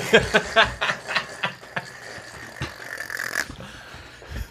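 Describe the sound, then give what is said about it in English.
A spray bottle squirts in a quick run of sharp, hissy bursts, then a longer spray and one last squirt, with no talking. “I had a spray bottle.”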